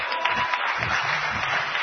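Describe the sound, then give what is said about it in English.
A church audience claps together in a dense, steady burst of applause that holds at an even, moderate loudness for a couple of seconds, with faint voices murmuring underneath. “Can we get a clap for that?”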